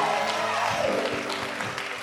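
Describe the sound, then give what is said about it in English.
An audience claps for Jesus together in a steady, dense burst of applause, with faint voices mixed underneath and a low tonal hum running through the whole stretch. “Oh, clap for Jesus.”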